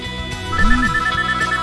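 A phone's electronic ringtone chirps in a quick, steady run of short repeating beeps over a low musical backdrop, moderately loud, with no one talking.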